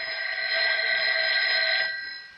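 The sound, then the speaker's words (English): A telephone rings with a steady, high electronic trill lasting about two seconds before trailing off, a call from the police. The ring is fairly loud and sounds alone, with no voices. “That wasn't your phone. It was mine. It's the police.”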